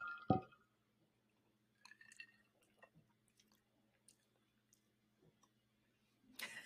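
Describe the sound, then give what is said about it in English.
Ice clinks against a glass of Texas bourbon on the rocks: one sharp knock at the start, then scattered light taps and ticks, ending in a brief louder rattle. No one speaks. “Okay, so we're trying the Texas bourbon on the rocks.”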